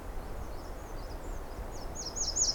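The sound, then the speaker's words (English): An American robin sings short, high whistled phrases, faint at first and then louder and clearer in the final second, over a steady low background rumble. “Of course, that American robin.”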